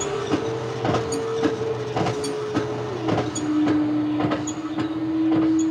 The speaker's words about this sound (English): Air! You hear me pumping the air out of the room. Yes, that's clever, isn't it? You breathe, and soon there'll be nothing there to breathe.